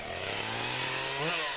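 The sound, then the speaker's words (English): Chainsaw hands drone steadily, then rev up briefly near the end, the buzzing harmonic whine rising in pitch; loud, with no voices. “I can easily dispatch them with my new chainsaw hands.”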